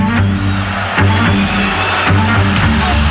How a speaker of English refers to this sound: Listen to this crowd. That's got to mess with your head, man.